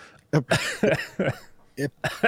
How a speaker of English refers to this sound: That was me coughing, trying to hide it as a laugh, and then just gave up.